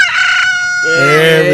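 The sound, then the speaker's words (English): A single drawn-out, loud rooster-style crow that starts high and shrill and then drops into a lower, throatier tone; not a real rooster but a human voice imitating one, for Red Rooster Terry Taylor turning 62. “That's not a rooster, though, but hey, close enough, right?”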